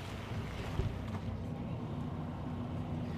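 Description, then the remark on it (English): A steady engine rumble with a deep droning hum and constant road noise from riding inside an intercity bus travelling from Te Kuiti to Whanganui, after a stop at Tamarunui. It holds an even level throughout with no talking. “Is that the rumbling of a bus, of an intercity bus, I hear you say? And my reply is, yes it is.”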